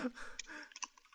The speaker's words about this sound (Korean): 스카이프 마이크는 잠깐 끄고 과자를 씹었는데 이게 녹음에는 들어갔어.